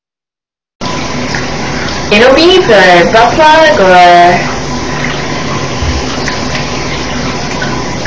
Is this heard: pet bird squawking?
no